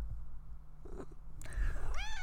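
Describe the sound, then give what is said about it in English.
A needy female pet cat meows while being petted, two short vocalizations in quick succession, the second rising and drawn out, over a faint low rumble with no talking. “we're going to give Grim some pets because she's a very needy cat”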